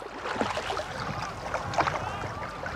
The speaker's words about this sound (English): That afternoon, we went out on a canoe with a couple of rowers and recorded stereo samples of the different type of effects that would be somewhat typical of an event.